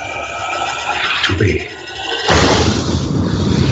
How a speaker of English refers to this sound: Target that explosion and fire.